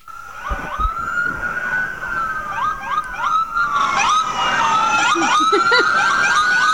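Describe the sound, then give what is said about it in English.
Several police sirens wail and yelp over one another in a continuous loud chorus from a motorcade of police cars in Hollywood, Los Angeles, California, on Oscar Sunday, growing fuller as more vehicles pass, with a low traffic rumble beneath. “Folks, he's showing me a endless cavalcade of... Are those even regular cop cars?”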